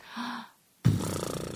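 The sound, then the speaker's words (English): A voice imitates their own sleep snoring, horse-like with flapping lips: a short breathy inhale, a brief pause, then a loud, sputtering lip-flap exhale that flutters rapidly until the end. “I snore, but not like a regular snore. This is what I did.”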